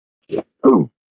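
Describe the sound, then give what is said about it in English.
One fairly loud sneeze: a short breathy intake followed by a stronger voiced burst, heard alone with silence on either side. “I think that was a sneeze.”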